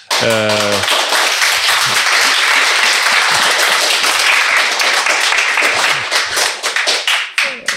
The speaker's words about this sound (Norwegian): Dere som hører på, dere fortjente virkelig en applaus, dere også, som har hengt med oss.